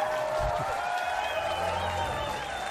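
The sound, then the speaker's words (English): A crowd applauds Senator Mike Lee steadily, a dense wash of clapping with cheering mixed in, holding at an even, moderate level throughout without any speech. “He's popular with that crowd, clearly.”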